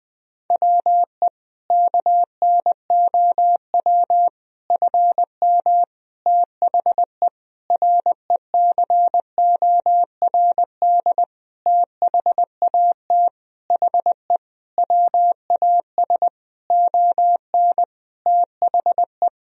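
Morse code practice sentences made of common words and abbreviations, sent at about 20 words per minute: a single mid-pitched beep keyed on and off in quick, steady bursts of dots and dashes, with short gaps between characters and no voices.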